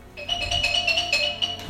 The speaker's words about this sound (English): A couple of weeks after she moved in, it was late at night, midnight, when the phone rang.